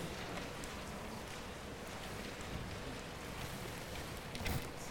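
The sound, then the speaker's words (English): A steady, soft rustle of many Bible pages turning at once as an audience looks up 1 Timothy 4:11 through 16, a dense papery shuffling that carries on without a break, with no one speaking. “A lot of pages turning out there.”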